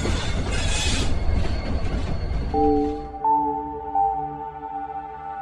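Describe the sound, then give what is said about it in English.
A corpse train pulls through the London Acropolis with a broad hiss of noise, then its wheels break into a sustained high-pitched metallic screech with several shifting tones, loud, with no voices. “The hissing and screeching of a corpse train pulling through the London Acropolis may travel through the ether of a bygone era.”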